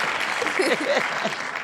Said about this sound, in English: Can we get a clapping sound? Okay. Yeah. Thank you.